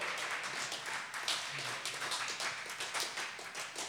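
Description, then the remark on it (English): A crowd at a poetry slam applauds a poet after her scores are announced, a dense wash of many hands clapping steadily at an even loudness throughout, with no voices standing out. “Applaud the poet.”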